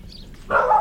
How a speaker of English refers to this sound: Oh, and a dog. So there is some noise